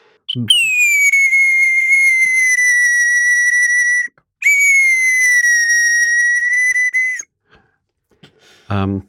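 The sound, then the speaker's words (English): A bird whistle imitating a nightingale: two long, loud, high whistled notes held steady for several seconds each, followed by a short rough burst at the end. “So this is a nightingale.”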